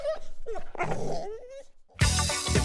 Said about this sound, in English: of young pit bulls on choker chains, letting the dogs get within inches of tearing each other apart. As I got closer, the boys looked in my direction and I heard one of them say to the other, "Be cool, he's a cop," and they pulled the dogs apart.